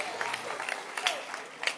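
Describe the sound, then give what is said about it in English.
A brief patter of clapping from a church audience during a service, scattered and uneven, with a few sharper claps standing out over a soft crowd murmur. “Oh, then clap.”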